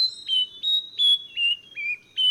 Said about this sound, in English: To get more information on this not-so-incredible songster, Google the Nightingale Wren.